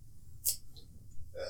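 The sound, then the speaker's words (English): A single short, sharp burp pops out near the start, quick, followed by faint breathy rustling and a low background hum. “Sorry, I'm still burping off.”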